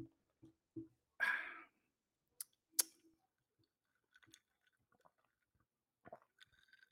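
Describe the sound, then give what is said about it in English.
A brief slurping sip of Jameson whiskey and ginger from a glass, surrounded by small clicks, taps and faint clinks, with no one talking. “But over here is Jameson and Ginger o'clock. So let me take my sip.”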